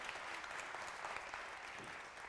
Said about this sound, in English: Everyone say hi and give her a round of applause. That's your way of saying hi.